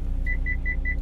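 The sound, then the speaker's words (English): Steady low engine rumble inside a car, with four short, evenly spaced electronic beeps chiming over it, like a dashboard warning tone. No one speaks. “Shocker, I'm in the car, and I thought I would explain, before we get to the main topic of today's episode, kind of what happened with the last episode.”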